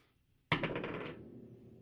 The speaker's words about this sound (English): If you want to roll a d20, you can. I guess we are playing Dungeons and Dragons, so rolling dice is part of that.